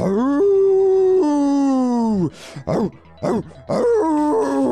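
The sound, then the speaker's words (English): A growl turns into a loud, wolf-like howl that holds for about two seconds with its pitch shifting, then breaks into three or four short, sharp yelping bursts before rising into a final wavering howl. “And you start to hear this growl, and it turns into a howl.”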